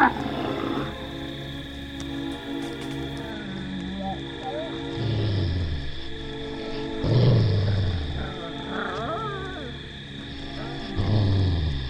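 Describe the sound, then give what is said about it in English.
A pack of wild wolves snarling and growling in rough, low bursts that swell every few seconds, loud, over a steady droning background. “this angelic apparition was in reality a pack of wild wolves.”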